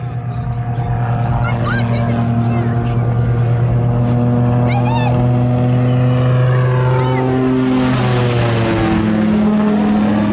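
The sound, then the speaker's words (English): A low-flying propeller airplane roars loudly and steadily overhead as it flies directly toward a boat and buzzes right over it, its droning engine pitch sliding downward as it passes, with boat engine noise mixed underneath. “Of how my wife reacted whenever this plane was flying directly towards our boat with our four kids on it. So, again, there's a lot of noise from the plane.”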